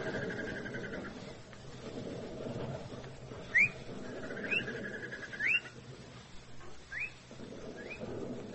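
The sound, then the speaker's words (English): A bird's mating call: short, sharp upward-sliding whistles, about five of them spaced a second or so apart, fairly clear against a low, steady outdoor rumble with no one speaking. “Nah. It's one of them birds, mating.”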